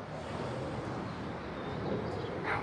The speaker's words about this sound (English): Yes, that's plane activity.